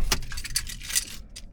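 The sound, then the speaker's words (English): A car being turned off: several quick metallic key jangles over a low rumble, with the jingling thinning out toward the end. “Turning off the car?”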